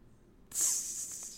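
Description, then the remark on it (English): A sudden, steady hiss of an aerosol air freshener being sprayed to cover a bad smell starts after a brief quiet moment and keeps going, bright and airy, with no talking. “That was me spraying the poopy.”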